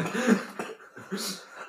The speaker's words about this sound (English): Yeah, stop coughing. I know, I'm trying so hard not to cough.